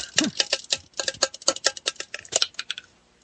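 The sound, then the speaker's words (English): Dice clatter and rattle inside a normal, plain cup rather than a paper tube dice tower, a rapid run of sharp, bright clicks that jostle irregularly for about three seconds before settling into quiet. “I would like to ensnare the two uninjured trolls in the electric chain of justice, and I sure as hell hope I roll good on this.”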